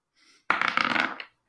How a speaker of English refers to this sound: Oh, that doesn't count. My dice fell off the table.